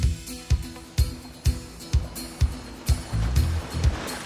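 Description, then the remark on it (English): A dive boat's engine drones steadily as it heads offshore from Key Largo or Tavernier toward a reef, the hull slapping against ocean waves in a quick, regular rhythm, about twice a second, with a rush of wind and spray around it. “Now we're heading on a dive boat that is gonna bring us out to a reef structure very similar to where we were yesterday,”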